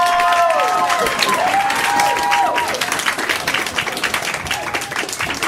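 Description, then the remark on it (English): A large live crowd claps loudly and steadily for the host, with high whoops and cheers rising over the applause early on before it eases into dense clapping that gradually softens. “Give it up for your host.”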